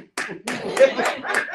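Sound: hand clapping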